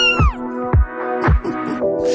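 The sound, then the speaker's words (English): A drawn-out meow slides downward in pitch over a bouncy musical backing, with deep drum thumps landing at a steady beat, part of a "When I say cat, you say meow" bit on Cork's Red FM breakfast show; loud, no talking. “When I say cat, you say meow.”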